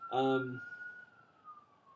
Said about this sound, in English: But one of the sirens coming for us. Yeah.